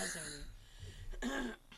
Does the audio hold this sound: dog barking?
no